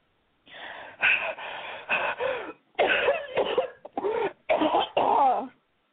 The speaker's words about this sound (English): she took a hasty puff, blowing up fast and coughing.